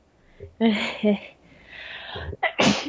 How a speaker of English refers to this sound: Don't sneeze, it's bad for you. Sorry for sneezing.